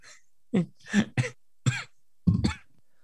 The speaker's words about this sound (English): just slowly coughing to death